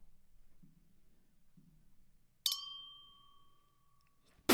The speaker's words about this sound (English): It's that good, good champagne clink. I think that was a good clink. That was a nice bad clink. It sounds bad. Like, literally, it sounds... I don't like this. I thought I liked the sounds of champagne clinks, and I just don't think I do.